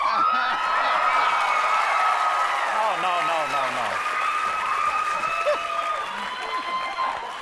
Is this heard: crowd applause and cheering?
yes